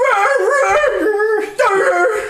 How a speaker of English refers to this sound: I just heard a dog barking. I was like, oh, it's real.